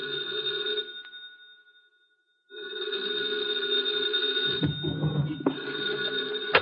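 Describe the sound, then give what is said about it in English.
A telephone in an office rings at 2:00 in the morning in two long bursts separated by a pause of silence, a steady electric bell tone, with some low rumbling under the second ring. “2:00 in the morning, the phone rang.”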